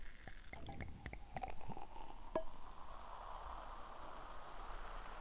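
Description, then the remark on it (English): Sparkling wine is poured into a glass right next to a microphone, starting with a few sharp clicks and splashes that settle into a steady fizzing hiss for several seconds, with no talking. “Okay, I'm going to pour it in the glass right next to the microphone.”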